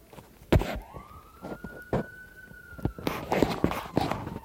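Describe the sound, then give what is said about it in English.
An emergency vehicle's siren sounds one long wail that rises, holds steady, then drops away, over street noise and scattered footsteps and knocks. “Oh, I hate when any emergency vehicle flips on their lights and or sirens to go through a red light and then they just turn them off.”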